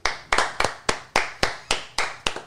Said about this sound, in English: Can we please give a hand clap?